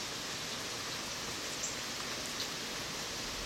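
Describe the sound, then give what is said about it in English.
Steady rain falls outdoors, watched from a porch, a soft, even hiss of drops spread across the whole scene with no pauses, at a fairly low level and with no voices. “I'm sitting here watching it rain, watching the animals, enjoying my time with nature and God.”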